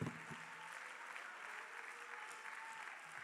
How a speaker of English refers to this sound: Go ahead, clap your hands a little bit right now.